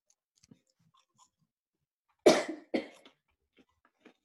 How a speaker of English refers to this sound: It's a significant cough. They were worried about the cough.